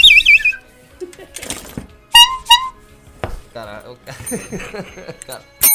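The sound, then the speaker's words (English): A bell from a shock jock sound-effects box rings twice in quick succession, bright and ringing, amid a jumble of other squeaky electronic effect noises and some voices talking. “Got a bell. We could use that bell every time we fuck.”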